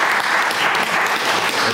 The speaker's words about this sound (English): If you believe, clap the Lord and praise Him. If you believe it.